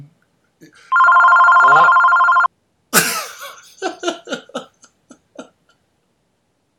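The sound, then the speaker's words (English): A loud, steady electronic phone ring sounds once for about a second and a half, followed by a sharp clunk and a few short, muffled vocal noises like coughs or throat sounds. “I think he got a phone call.”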